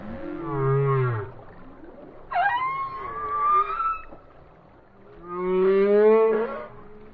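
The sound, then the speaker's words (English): Three long, moaning song calls of an Atlantic humpback whale, rising and bending in pitch with rich harmonic overtones, sounding resonant with no voices present. “Known for their alluring songs, Atlantic humpbacks spend their summers in nutrient-rich cold northern waters, where they fatten up on krill and small fish, and then head south for the winter to cozy up, mate, and give birth.”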